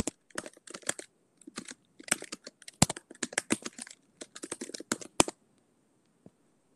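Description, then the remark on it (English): Rapid, uneven clicking of keys on a computer keyboard as someone types to look up the meaning of a German word, sharp taps in quick bursts with brief pauses, ending in a couple of isolated strokes. No one speaks. “Are you looking it up? You're typing.”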